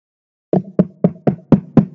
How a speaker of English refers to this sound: You hear that knocking? I do. Who is it?